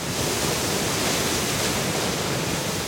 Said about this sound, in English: Kurt Johnson's looking over a railing at a surging jet of water, launching at least 50 feet into North St. Vrain Creek at the base of Button Rock Dam in northern Colorado. This is a great example of an enormous amount of mechanical energy,